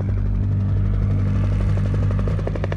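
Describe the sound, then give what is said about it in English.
An approaching helicopter, of the kind used to shoot deer in deer culling, its rotors thumping in a fast, steady rhythm over a deep, droning engine hum, loud and continuous throughout with no voices. “Thought it'd be a lot easier, we just shot them out of the helicopter.”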